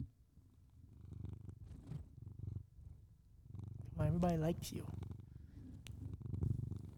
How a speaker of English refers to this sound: Let me see if Bullet will purr for you guys, because he has a sweet voice. Bullet, you wanna purr us out? Hey, over here.